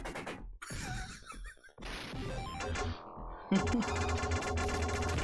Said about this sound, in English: This is a pretty good example of the Genesis sound chip sounding like farts.